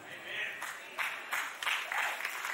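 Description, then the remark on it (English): A crowd claps in a sustained, dense burst of applause, with swells of louder clapping over a steady wash of hands, bright and hissy in tone. “Now you're clapping, but I'm confused because it's kind of like stand on your right foot, stand on your left foot.”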